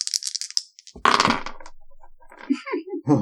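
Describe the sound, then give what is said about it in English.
Quick clicking rattle of dice shaken in a cup, then a louder clattering burst as they tumble onto a surface, followed by a brief murmur of voice; the dice are rolled to pick a giveaway winner and land on 13. “But I'm going to roll some dice here, see who gets this Pixel Thor.”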